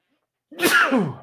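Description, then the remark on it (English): A single sharp sneeze, caused by the person's dogs being with them, bursts out after a brief silence, loud and breathy with a quick voiced tail fading away. “I don't know why I know why I'm sneezing because my dogs are here with me.”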